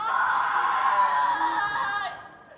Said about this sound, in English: And I remember seeing a video of his mother on the street screaming upon hearing the news that her son had been executed.